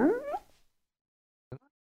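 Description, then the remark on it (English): A man's voice does a short, fairly loud imitation of a dog bark, simply saying a single sliding vocal woof. After a second of silence comes a brief, quieter second sound. “He doesn't woof like a dog. He actually just says woof.”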